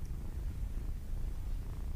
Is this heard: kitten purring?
yes